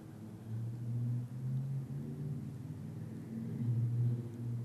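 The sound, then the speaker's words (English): A car passes outside, heard as a steady low engine rumble that swells slightly and holds for several seconds, muffled, with no voices. “Maybe right now it's with the sound of the car outside.”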